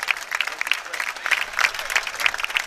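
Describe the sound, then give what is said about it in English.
A crowd on the Briarcrest side of a game applauding steadily as an injured player is lifted onto a stretcher, with dense, overlapping hand claps forming a continuous crackling wash at moderate volume, and a few louder claps standing out now and then. “You can probably hear the crowd over here on the Briarcrest side clapping.”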